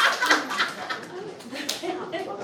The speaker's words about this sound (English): If you can hear the sound of my voice, clap one time.